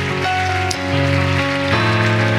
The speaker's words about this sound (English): Come on, can we just give that hand clap to the Lord tonight? Hallelujah.